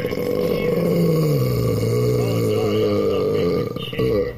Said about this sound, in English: That's the burp of a man.